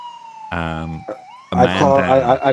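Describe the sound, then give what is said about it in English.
A voice imitates the siren of an emergency vehicle screaming off along a highway, producing two loud, rising-and-falling wailing bursts with a brief gap between them, and a thin steady tone runs faintly underneath. “Then they scream off.”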